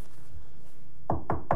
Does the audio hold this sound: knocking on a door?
yes